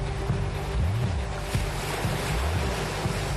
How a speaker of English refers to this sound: The year, 1992. When a famous Israeli director, Moshe Alpert, captures one of the greatest storms ever recorded on tape in the Sea of Galilee.